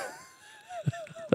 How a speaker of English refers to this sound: Let's see if he answers. Bob Goff, best-selling author. This is his cell phone. Let's see if he does pick it up. Two rings.